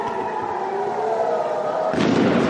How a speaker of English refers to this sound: The air raid sirens were followed within seconds by a loud blast. What you've just been hearing is exactly why authorities want the last few thousand people left in this town to evacuate to safety.